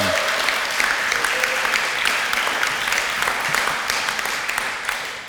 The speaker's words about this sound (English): So let's give them a round of applause, hey? Yeah.